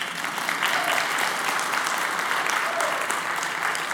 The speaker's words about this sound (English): You can applaud at that.